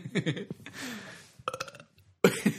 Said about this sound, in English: I think this is probably officially the most burps on any podcast to have done so far. Yeah, have you counted any of them?